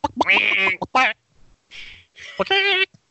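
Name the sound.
imitated duck quack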